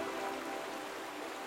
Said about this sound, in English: Some of the villages get as much as 38 feet of rainfall a year. 38 feet of rainfall. The rain comes down in these raging torrents that over time have carved their way into the limestone, creating these deep canyons overflowing with raging rivers.